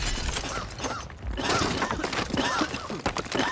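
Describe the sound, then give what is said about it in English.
A loud explosion ripping through a command center, with crashing, shattering debris, a dense roar of crackling and breaking that keeps going for several seconds, with low thuds underneath and brief dips between bursts. “The explosion ripped through the command center.”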